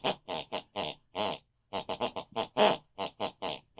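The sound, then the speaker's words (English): A woman snores at night in a rhythm that follows the tune of a song she listened to before bed: about fifteen short, nasal, snorting bursts of varying pitch, a brief pause partway through, then more. No talking. “Each week we press our ear against the bedroom wall, whatever my mother listened to before she went to bed, picks and pulls in our unconscious mind, and that's the very tune that she snores. Let's have a listen tonight.”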